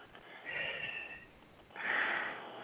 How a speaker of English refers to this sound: All right, is this an obscene phone call or are we doing a show? What is this? I hear breathing.